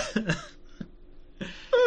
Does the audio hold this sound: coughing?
yes